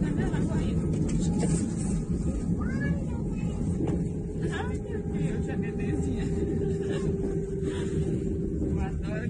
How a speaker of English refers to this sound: So we have the passenger sitting on the over the right wing area. And it's touching down right about now. Okay, just touched down.